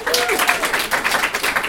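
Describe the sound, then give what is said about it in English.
A crowd applauds steadily, a dense, crackling wash of many hands clapping at once with a faint voice-like tone early on, loud and even throughout. A studio audience votes by applause on whether they would rather go to IKEA with Spider-Man or Wonder Woman. “Please applaud for one or the other.”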